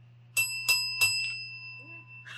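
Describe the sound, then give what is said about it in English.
A bicycle-style bell is rung three quick times, each bright metallic ding overlapping the last and leaving a lingering ring that fades over a low background hum. “I'll maybe ring the bell again.”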